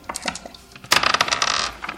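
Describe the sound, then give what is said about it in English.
Dice clatter across a hard tabletop for an espionage roll in a game: a few light clicks, then a dense rattling tumble that quickly settles. Fairly loud, with no voices. “you could give me an espionage roll to see if you could figure out maybe if there's a secret meaning behind its presence in the paper.”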